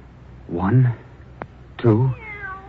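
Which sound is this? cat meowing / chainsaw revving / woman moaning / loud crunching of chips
cat meowing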